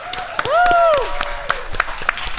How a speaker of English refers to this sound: For the first time, I don't have to press a button of the applause sound effect. We have real people actually clapping.